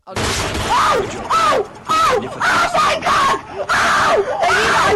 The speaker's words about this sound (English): She's screaming in pain.